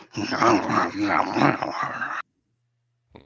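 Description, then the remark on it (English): A voice imitates a guttural creature speaking unintelligibly in a growl, a loud, rough snarling that rolls on for about two seconds before cutting off into silence, with a brief sound starting right at the end. “Is it like talking or just growling?”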